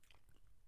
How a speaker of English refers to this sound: Chewing.